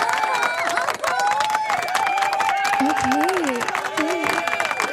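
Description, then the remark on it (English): Dense, steady clapping from many hands fills the whole stretch, loud and continuous, with cheering voices and crowd chatter rising over it. “Ooh, you get the clap.”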